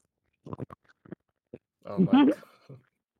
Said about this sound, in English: Wait, ladies and gentlemen, audio listeners, we're getting firsthand experience at ASMR. All right. For example, like you have to munch like this, bro.